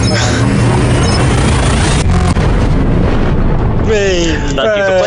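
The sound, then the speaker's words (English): A spaceship's hyperspace jump in a video game: a loud, sustained roaring whoosh with a deep rumble, a brief surge midway, then wavering tones and voices toward the end. “Well, the closing note of the game tonight will be your hyperspacing out of that system.”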